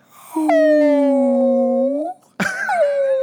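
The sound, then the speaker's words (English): A person imitates humpback whale song with a long, sustained, slowly gliding moan, breaks briefly, then starts a second wavering call; loud, with no other sounds. “It's a great whale song. It's my whale impression.”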